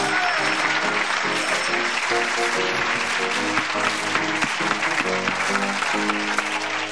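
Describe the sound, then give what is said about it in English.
A studio audience applauds steadily and loudly for several seconds, a dense wash of clapping with a musical tone underneath. The applause never tapers off. “It sounds like a great audience. Yes, really. They'll applaud anything, right?”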